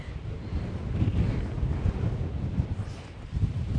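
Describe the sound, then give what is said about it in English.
Strong wind buffets the microphone outdoors in extreme conditions just north of a marae, a continuous low rumbling roar with irregular gusty surges throughout, loud, with no voices. “So it's pretty windy here, as you can hear. It's pretty extreme conditions, actually.”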